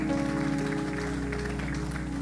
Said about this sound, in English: Hallelujah. Let's give the Lord another clap offering.